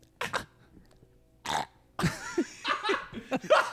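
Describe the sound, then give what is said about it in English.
A person vocally imitates a Shih Tzu choking: a couple of short, raspy hacking bursts with pauses, then a longer gurgling, sputtering stretch, fairly loud. “It's like a Shih Tzu choking.”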